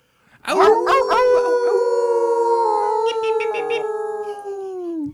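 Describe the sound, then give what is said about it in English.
Several human voices howl together like wolves, all at once, one long sustained, slightly wavering howl lasting about five seconds, loud, tapering off at the end. “Can we get a little wolf howl to put a bow on this episode?”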